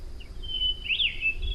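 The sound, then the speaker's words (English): A bird sings a thin, high whistling call that holds steady and swoops up and back down, heard faintly from near trees by a green meadow over a soft low outdoor rumble. “Imagine hearing birds in the near trees.”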